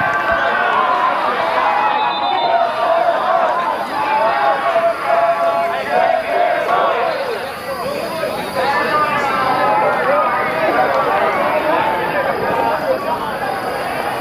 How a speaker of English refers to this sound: But good old soccer, football. This is my first time seeing that. We'll fade out with that, the sound of soccer jubilance.